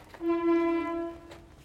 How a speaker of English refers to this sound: Yes, I'm in my shack and there's somebody outside honking their horn that sounds like I don't know what.